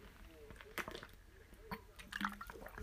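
drinking water

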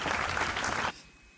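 round of applause

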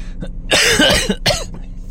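coughing

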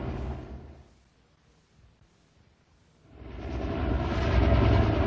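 helicopter hovering

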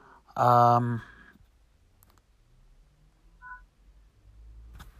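phone notification alerts

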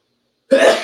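sneeze

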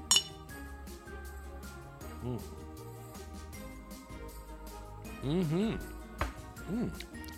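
glass clinking

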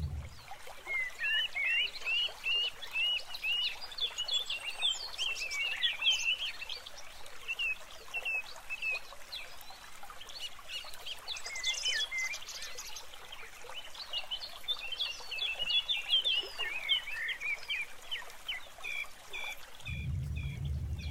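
birds singing outdoors

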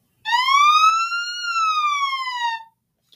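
ambulance siren

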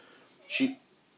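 dog noises

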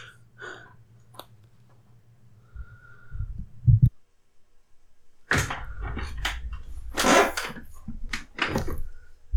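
chair squeaking

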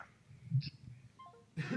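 coughing and throat clearing

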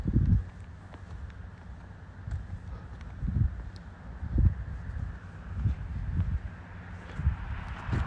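wind blowing on microphone

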